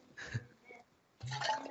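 Water being poured in two short, quiet bursts, a brief splash early on and then a longer, steadier trickle of liquid, with no talking.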